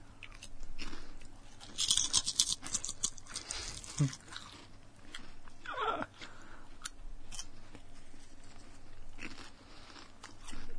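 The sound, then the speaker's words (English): Close-up chewing and crunching, with irregular wet bites and crisp munches repeating throughout, loud and right against the microphone, with no talking. “I can already hear, why are you guys chewing to the microphone?”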